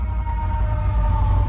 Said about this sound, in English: Okay, that sounded like a siren, right? Did you feel that?